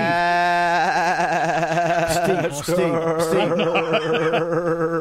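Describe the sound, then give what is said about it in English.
A man's voice imitates a sheep, letting out a long, wavering bleat with a shaky vibrato that breaks into several quivering baa sounds, loud, with some laughter-like sputters. “He's dropped into his sheep role play.”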